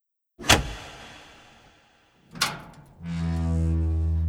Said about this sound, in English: you see the lever that matches the one that opened the door from the outside? Yeah. Pull it.